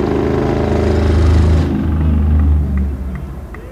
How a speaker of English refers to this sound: I don't know if that was a low-flying airplane or a motor vehicle we just heard.